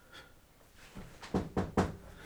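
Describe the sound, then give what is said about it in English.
A few quick, crisp knocks on a wooden surface: a soft tap, then three sharper raps in quick succession, with no talking. “knocking on wood.”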